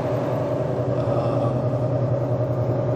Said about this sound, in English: We're in Kentucky, headed to Missouri. Goodness, what is this truck doing?